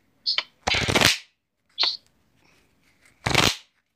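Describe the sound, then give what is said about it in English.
A deck of cards being shuffled in two riffle bursts, each a dense crackling flutter lasting about half a second, with sharp taps between them; fairly loud, with no voices. “So, you know, let's get the shuffling of the cards.”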